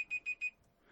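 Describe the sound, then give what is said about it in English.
An alarm clock beeps four times in quick, even succession with sharp high-pitched electronic tones, then falls quiet. No one speaks. “That was my alarm going off because I'm currently building a table.”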